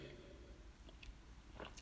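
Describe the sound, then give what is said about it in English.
A quiet sip of wine followed by a few soft, wet lip smacks and mouth clicks scattered over a couple of seconds, with no talking. “Hold on, let me sip my wine.”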